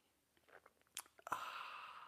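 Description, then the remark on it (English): Quiet mouth sounds and a few soft slurping clicks as someone sips a drink, then a sudden louder breathy rush that carries on steadily to the end. “It's called the simultaneous sip, and watch it go. It happens now.”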